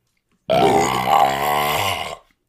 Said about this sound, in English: Sorry about that. That's a beautiful burp, dude.